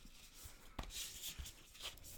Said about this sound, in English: Shuffling the cards a bit.